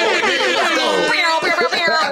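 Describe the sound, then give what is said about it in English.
A woman's loud voice imitates an air horn blast, a harsh, buzzy, sustained blare with wavering pitch lasting about two seconds and briefly breaking near the end. “She did the air horns.”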